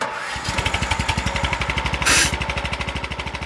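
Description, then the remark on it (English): A lawnmower engine starts up at sunrise and settles into a loud, rapid, rhythmic chugging, with a brief burst of hiss partway through. No one speaks. “The sun is rising and I hear the lawnmower starting up.”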